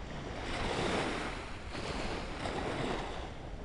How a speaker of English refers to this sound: Like the waves lapping on the shore here.